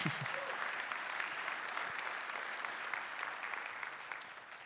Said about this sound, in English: And here we are thousands of years later in our Easter best, still talking about Jesus. Yes, that's worth clapping for.